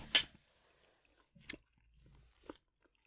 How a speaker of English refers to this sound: Oh, it's got the sausage in it too. I've been warned it's quite peppery. Hmm. It's just a sound of chewing now. Is this like an ASMR vid or is it just offensive? I can't tell.